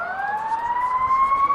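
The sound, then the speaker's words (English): Fire engine sirens wail loudly and steadily as fire engines pass by a ballpark during a baseball game, the tone slowly rising in pitch over a faint background of traffic rumble, with no one talking. “As we've got some fire engines going by the ballpark, you can hear.”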